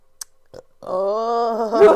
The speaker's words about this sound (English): Oh, as I burp with it.